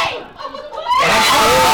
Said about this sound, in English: As you can hear from the screams around us here, there's some plenty of happy people